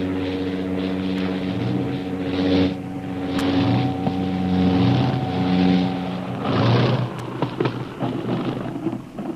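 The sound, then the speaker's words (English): A fast seaplane piloted by Karnak drones steadily, its propeller engine a deep harmonic hum with rushing, whooshing surges of wind or water swelling over it as the plane comes down onto a lake where a small boat is adrift. No voices. “Last week, the seaplane was about to land when a small boat was discovered adrift on the lake, making the already precarious landing more dangerous.”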